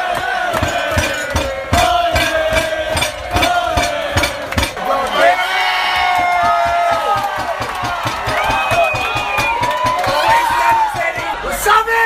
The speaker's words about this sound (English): That was just recorded at a pub here in Melbourne this afternoon. There was a lot of chanting going on. I don't know if they know what quite to say. There was a lot of just inaudible just screams and grunts and let's go Connor